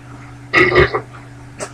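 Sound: burp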